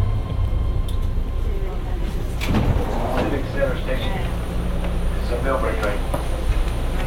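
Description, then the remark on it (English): Loud, constant low roar and rattle inside a BART train car in motion, steady throughout, with indistinct muffled voices rising briefly above the din. “Memorize the stations, but these cars are so loud and the PA is so weak that it's useless.”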